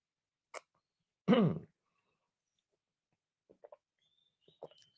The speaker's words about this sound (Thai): ขออนุญาตดื่มน้ำนิดนึงนะครับ